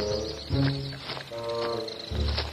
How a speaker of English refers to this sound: Oh, these nasty birds! A storm is coming!